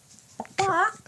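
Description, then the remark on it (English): A person imitates a chicken: a short clipped cluck followed by one drawn-out, wavering squawk, fairly loud, with nothing else around it. “Why is there a chicken roaming around my estate right now?”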